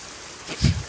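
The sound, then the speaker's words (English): Rain falling as a steady, even hiss, with a short, louder low-pitched surge near the end of the one-second stretch. No one speaks. “It's raining.”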